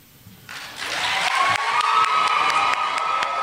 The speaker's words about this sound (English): You always gotta get that person that's clapping away from the mic. It just seems like looks like the right thing to do.